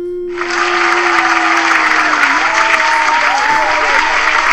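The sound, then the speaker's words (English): A burst of dense audience applause for the hosts starts abruptly and carries on steadily and loudly, with a sustained tonal hum running underneath and a few faint whoops mixed into the clapping. “All right, so let's get a big round of applause, audience, for me and my friends.”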